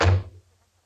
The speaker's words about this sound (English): Shut the door. I said to shut the door.